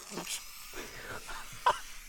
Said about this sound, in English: I need to sneeze. Go on, sneeze.